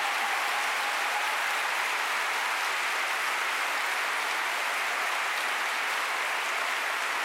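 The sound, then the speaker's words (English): Sustained audience applause, a dense steady wash of many hands clapping at even loudness for the full length, with no voices breaking through. “And I think, you know, the men in the audience should stand up and applaud.”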